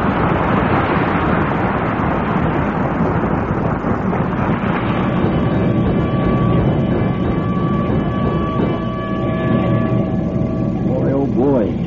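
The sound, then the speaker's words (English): The new $30,000 fire engine of the Wistful Vista Fire Department, giving a prize ride around town, rumbles along with a loud, steady roar of motor and road noise; a sustained whining tone rises out of the din midway, and brief upward-sweeping notes cut through near the end. “The first prize was a ride around town on the new $30,000 fire engine.”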